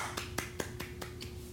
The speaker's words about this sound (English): Oh, they make a shot and they be like, the fans at the game are like this. Golf claps.